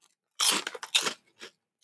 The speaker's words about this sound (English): I mean, it's just kind of like a subtle, crunchy, seasoned cracker.